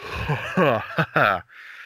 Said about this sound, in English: love a yawn. Big night, was it?